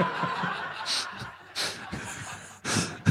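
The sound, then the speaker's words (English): Several loud breaths in and out from a father come in airy bursts at an uneven pace, with soft chuckling and low murmuring voices underneath. “Nah, it's just Dad breathing in, breathing out.”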